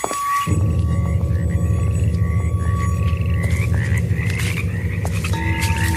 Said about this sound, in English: Oh, it's like a hothouse down here. Oh, insects. Just mosquitoes.